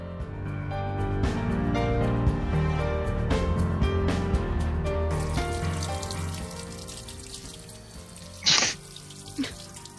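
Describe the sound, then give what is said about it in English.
A steady rush of water, like a waterfall, swells in partway through and continues to the end, layered over lower tonal sounds, with a brief sharp burst near the close. “Anyway, I lost my train of thought because suddenly there was a river in my ear.”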